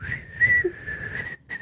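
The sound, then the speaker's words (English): A loud, shrill whistle held as one steady high note for over a second, briefly cutting out and then starting again. No one talks and there is no other sound. “I have a whistle, but it's in my bedroom in case my building were to collapse and I would be under rubble.”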